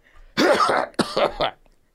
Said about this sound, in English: All right, let me do my cough again. That was weak. All right.